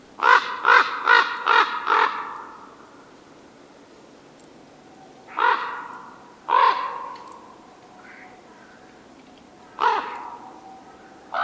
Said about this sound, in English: Whereas the raven is more of a croaking noise. I always like to say it's more of a deep guttural sound. So they do more of a croaking noise. The raven sounds more like this.